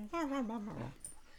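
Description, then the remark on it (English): A dog whimpers, wanting to be let out for a wee: one drawn-out, wavering whine that slides downward in pitch over about half a second, then trails off into quiet. “But for now I'm going to go, because I've got a dog going at me, wanting out for a wee.”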